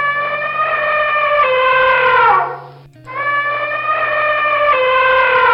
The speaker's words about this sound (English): It's an elephant.